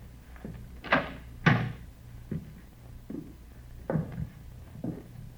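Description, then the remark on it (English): An apartment door is tried and opened: two sharp clunks of handle and latch, followed by several softer knocks and rattles, with no voices. “Better try the door, huh?”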